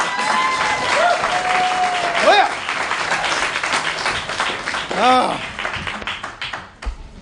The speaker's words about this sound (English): I hear claps harder than that on a golf course somewhere.